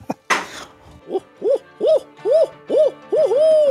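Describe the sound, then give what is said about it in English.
A person imitates an owl, giving a quick run of about seven rising-and-falling hoots in steady rhythm, clear, the last one drawn out. A short rustling thump comes just before. “I got to hear your owl hoot.”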